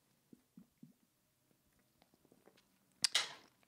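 A few soft gulping sounds as someone sips a drink, followed by small mouth clicks and a sudden breathy exhale at the end. Nobody speaks.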